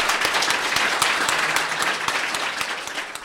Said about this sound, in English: So a round of applause